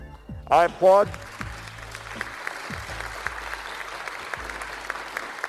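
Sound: applause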